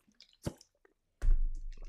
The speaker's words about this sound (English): Let's take a sip of water.